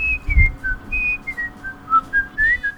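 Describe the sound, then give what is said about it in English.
Someone whistles the theme tune of The Andy Griffith Show, a bright, jaunty melody with notes rising and falling in a steady, bouncy rhythm, with a soft low thump near the start and faint background rumble. “They're whistling the Andy Griffith Show theme song.”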